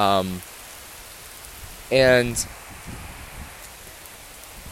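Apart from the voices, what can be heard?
heavy rain pouring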